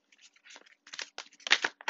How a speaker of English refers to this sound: I am shuffling the Rider-Waite tarot. I cannot guarantee you'll hear me shuffling the whole duration of this reading, but based off of faith, we will go from here.